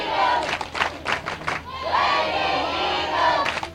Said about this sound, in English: Got dueling fan sections screaming Lady Eagles or Lady Hornets. I must say the Lady Eagles are winning this battle in the cheering section.